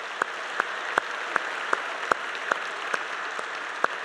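A steady wash of applause from a group, with sharper individual claps standing out in a regular rhythm roughly every half second. No one speaks.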